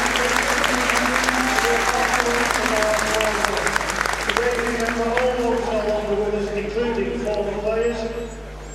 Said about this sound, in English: But first, we need to mention that this is the Remembrance Day here, which the club every year have to remember players, people associated with the club and fans who have passed away in the last year. So now, a minute's applause for them.